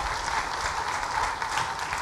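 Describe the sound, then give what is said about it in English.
A crowd applauds steadily, with dense overlapping claps forming a continuous crackling wash at a fairly even loudness throughout, with no voices standing out. “If you are clapping, clap very well.”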